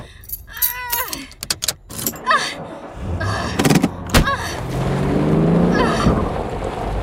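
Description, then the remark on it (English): Metallic keys on a deputy's key ring jangle and clink in quick bursts, followed by a police car's engine turning over and settling into a steady, swelling rumble. No voices. “She climbs into the cop car.”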